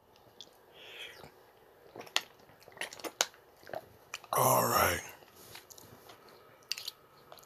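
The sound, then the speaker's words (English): A new Deer Park plastic water bottle cap twists open with a series of sharp crackling clicks and crinkles, scattered over a few seconds, with a short spoken remark in the middle. “Just opened the new water bottle, but obviously I have 2 that are already open in my room.”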